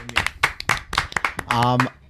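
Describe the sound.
A short burst of quick hand clapping, sharp overlapping claps in an uneven patter, mixed with voices, including a sustained vocal whoop or cheer near the end.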